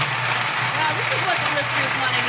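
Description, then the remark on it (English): A blender blending a drink roars steadily at full power, a loud, continuous motorized whir with a low hum underneath, while faint voices murmur beneath the noise. “Blend a drink. Oh, wow. Very loud.”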